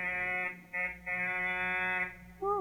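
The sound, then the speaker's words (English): A room buzzer buzzes in a few steady, harsh bursts of unchanging pitch, with brief gaps between them, before a short sliding tone at the end. “I'll buzz his room and see if he's awake.”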